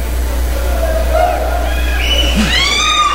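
A live audience at the Double Down Casino Saloon, during a live Radio Free Bakersfield broadcast, cheers and hollers, with sharp rising whoops and whistles breaking out near the end over a steady wash of crowd noise and a low hum.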